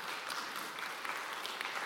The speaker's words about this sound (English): So dads, happy Father's Day. We celebrate you. And yeah, we can clap for that.